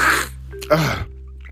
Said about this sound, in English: you mind if I take a sniff a little bit? Hold on.